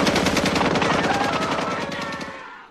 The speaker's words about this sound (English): And poor Wanda is shot to death. And then more bullets rain inside the you know, the diner. Well, prior to this, actually, that's when most of the bullets came through, and it killed a bunch of the other side characters off.